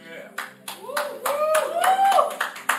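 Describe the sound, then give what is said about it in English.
A crowd claps together in a steady, even rhythm, about nine sharp beats, fairly loud, with a rising vocal whoop or cheer faintly underneath. “You better clap like that for me too.”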